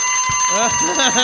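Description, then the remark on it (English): An alarm timer rings with a steady, high electronic tone that holds through the whole moment, partly masked by a person talking over it. “It did ring.”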